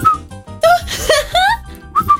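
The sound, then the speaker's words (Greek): A person whistles a few short, breathy notes with the mouth, some sliding upward in pitch, separated by brief pauses and airy noise, close and fairly loud. “Κοίτα, είναι πάρα πολύ σημαντικό για να σφυρίξεις πώς βάζεις τη γλώσσα.”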